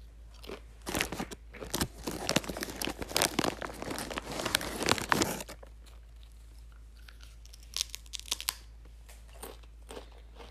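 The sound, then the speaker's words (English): Loud crunching of spicy nacho Doritos tortilla chips being eaten, with a dense flurry of sharp crunchy bites for about five seconds, then quieter, sporadic chewing crunches. No one speaks. “Let me eat my Doritos.”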